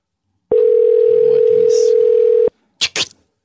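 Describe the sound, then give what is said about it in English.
A loud, steady telephone dial tone hums for about two seconds as a phone call is being placed, then cuts off abruptly, followed by a couple of brief clicking noises. “I call him this time of day every Thursday.”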